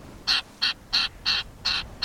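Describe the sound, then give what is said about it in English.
A Wilson's Storm-Petrel, a tiny seabird, gives six harsh, raspy chattering calls in a steady, evenly spaced rhythm, clear, with no talking. “Sailors once believed that Wilson's Storm-Petrels foretold a dangerous tempest.”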